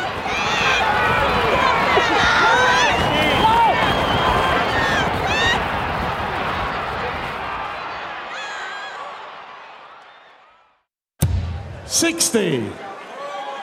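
A loud crowd of horse racing fans roars and yells continuously with pounding rhythmic thuds beneath, then the noise fades away before an abrupt cut to a brief burst of new sound.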